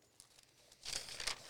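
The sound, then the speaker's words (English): Notebook pages being flipped to find a free page: a faint papery tick, then a brisk burst of rustling and crinkling that lasts under a second, with no voices. “Well, hold on, I got to find a free page.”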